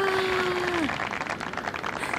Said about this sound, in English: Another Unleash Your Sexy podcast, and the crowd goes wild.